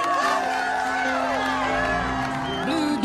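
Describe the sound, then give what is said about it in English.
A crowd cheers and whoops in a steady, dense roar, with many overlapping voices rising and falling in pitch for a few seconds, like an audience reacting at the end of a show. “I don't remember them cheering.”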